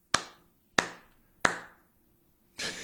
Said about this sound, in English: Slow clap.